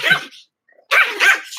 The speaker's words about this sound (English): Oh, I do like that dog. That dog's kind of funny.